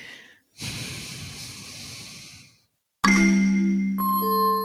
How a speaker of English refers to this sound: Okay, it's like a weird breathing thing that you do. I call it backwards breathing.